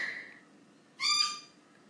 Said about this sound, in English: As my lorikeets continue to nag me in the background to go and let them out.